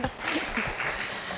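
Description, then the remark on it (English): An audience claps steadily, a dense, even patter of many hands at a moderate, sustained level, with faint voices mixed in underneath. “You were like right there, right there, starting the clapping festival.”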